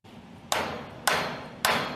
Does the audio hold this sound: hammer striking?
yes